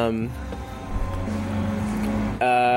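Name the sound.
bus passing by outside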